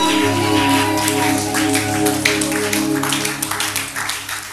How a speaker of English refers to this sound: Somebody clap those hands right now.